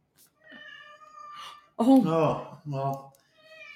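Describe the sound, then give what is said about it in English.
A small orange male domestic cat meows several times in a row, with long, drawn-out cries; the middle ones are louder and lower-pitched, while the first and last are thinner and fainter. “Did you pick that up on the mic, the cat in the background?”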